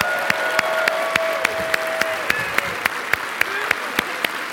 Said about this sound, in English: Let's give him 15 seconds of the loudest clap ovation you can possibly give. Ready? 1, 2, 3, go.